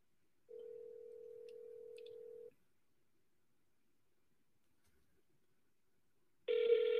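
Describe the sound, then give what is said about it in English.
A phone call to a property seller rings out through the earpiece: a steady ringback tone sounds for about two seconds, falls silent for several seconds, then begins again, with no one answering and no voices. “Nope, that seller's not picking up.”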